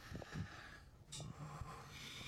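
Heavy, noisy breathing with a snorting, nasal quality, including one sharp hissy exhale partway through, over a steady low rumble. Nobody speaks.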